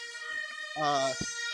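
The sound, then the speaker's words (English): A fire engine siren sounds steadily on a city street in Berlin, a bright, sustained tonal wail, with a voice briefly speaking over it. “Fire engine. There we go.”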